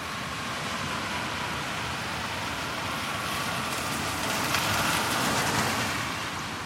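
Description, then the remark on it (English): Steady rain pours onto a street in Manhattan at the corner of Park Avenue and East 95th Street in April 2023, a dense, even hiss with a low rumble of traffic underneath, swelling slightly toward the end. No voices are present. “It's April 2023, and it's raining in Manhattan.”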